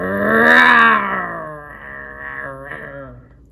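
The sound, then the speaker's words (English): Young lions roar: a loud, rumbling bellow swells and then trails off into lower, groaning growls, with no other sounds around it. “The young lions roar for their prey.”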